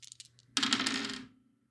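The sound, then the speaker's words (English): A few light clicks, then several dice tumble and rattle across a hard tabletop for under a second before settling, fairly loud with no one talking; a player rolling for a game. “I forgot to add the dice together.”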